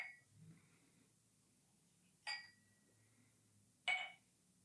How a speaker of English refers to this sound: I hope it can catch that sound as well. Ooh, finally. The wonderful ring of glass.